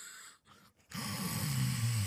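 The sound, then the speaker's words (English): A person mimics loud snoring of the character Calden going to sleep: after a couple of short breathy pauses, a long, rough, droning snore rumbles up strongly and holds for over a second. “Calden snores very loudly.”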